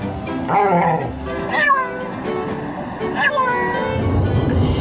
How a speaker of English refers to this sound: Oh my God, that's really weird. Little dog.